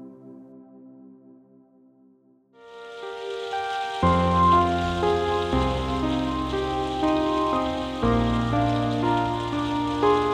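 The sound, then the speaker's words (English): Soft, steady patter of light rain fades in after a couple of seconds and continues evenly, layered with gentle sustained music chords throughout; no one speaks. “Light rain and calming music.”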